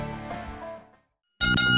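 Two bell dings marking the start of round two: a ringing tone fades out, a short silence follows, then a second bright, loud ding strikes. No voices are heard.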